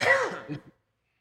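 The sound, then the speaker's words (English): A raspy throat clearing with a short cough, a gravelly burst that tapers off into a couple of smaller rough catches before falling silent. “Cough button.”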